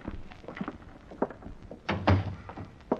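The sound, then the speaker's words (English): A motel room door is unlocked with a key and handled: light knocks and rattles, then a heavy, solid thunk as it swings shut, followed by a softer knock. No voices. “Then as I opened the door, I realized I had company right behind me.”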